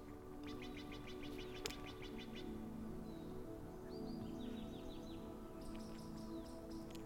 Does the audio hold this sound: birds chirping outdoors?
yes